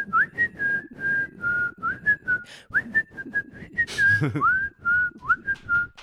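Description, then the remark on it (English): Someone whistles a bouncy melody, the tune Heather Graham whistles in Scrubs, a steady run of clear, bright notes that slide between pitches, with some faint rustling and soft knocks underneath. “Heather Graham whistles it in Scrubs as well.”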